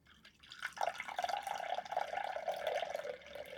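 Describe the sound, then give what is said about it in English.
Tea pours steadily from the first of two teapots, the one on the left, in a continuous stream, its splashing pitch sliding gradually lower as the cup fills, with no talking. “Right, so this is the first teapot on the left.”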